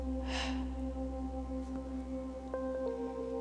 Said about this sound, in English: Breathe fully and hold for a moment. and then exhale sharply.